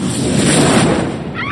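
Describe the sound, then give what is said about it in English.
A fireball explosion erupts into a loud, sustained fiery roar, a dense rumbling whoosh that holds steady for over a second before a thin hiss flickers at the tail. No voices. “Wayward fireballs.”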